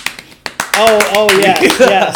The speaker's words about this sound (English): I forgot to be padding my show with fake applause